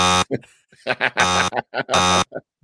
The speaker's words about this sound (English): That's a really bad buzzer, by the way. I should have picked a different one. This doesn't sound like a buzzer. This sounds like a technical glitch.